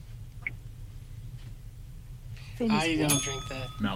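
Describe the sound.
A single bright ding of a contestant's small desk bell in a quiz game rings out and lingers, overlapping a burst of excited voices after a quiet, murmuring start.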